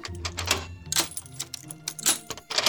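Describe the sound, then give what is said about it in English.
A key rattles and scrapes in the lock of a door set in a floor, with a series of sharp metallic clicks and jangles over a few seconds as it turns to unlock it. No one speaks. “The door in the floor is unlocked.”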